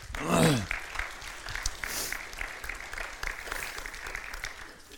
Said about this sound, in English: Everybody's give God a hand clap this morning.